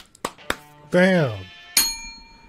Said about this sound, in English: Bam! Got the bell.